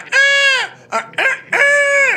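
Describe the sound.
A loud, shrill victory cry like a bird of prey, from a man standing on the chest of a bouncer he knocked down: a long wavering screech, two short sharp yelps, then another drawn-out screech, with no talking.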